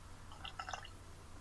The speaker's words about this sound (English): Did that make a noise? A little bit. That was a bit of the cherry schnapps going in. The plum's already in there.